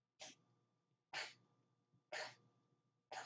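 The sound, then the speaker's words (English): A man makes four harsh, hacking cough-like bursts, evenly spaced about a second apart, loud, with a faint steady hum underneath and no talking. “Yeah, I was gonna say, bro, I don't think he's sneezing. I think he's like giant fucking hairball.”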